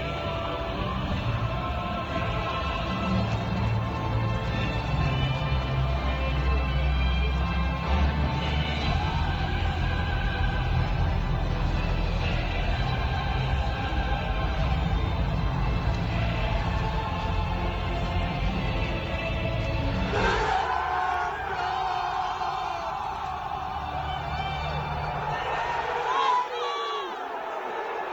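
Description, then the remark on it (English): A huge stadium crowd in Napoli sings the Champions League anthem in unison, heard from outside the stadium: a dense, sustained roar of voices that swells into louder cheering around two-thirds of the way through. “Listen to how excited the crowd is in Napoli for the Champions League song.”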